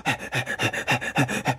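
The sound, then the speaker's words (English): A dog sitting with its tongue hanging out pants heavily and fast, a steady run of about eight raspy, breathy huffs in quick rhythm, with no talking. “but he's just sitting there with this big old dumb smile on his face, tongue hanging out, just breathing heavy.”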